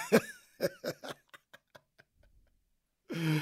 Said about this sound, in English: Crazy thing, man, I still feel this, like, the cough is so weird. It only happens when I talk. It only happens during this show.